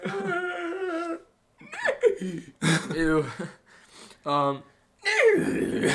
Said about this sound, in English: That was me yawning. Was it? Yes.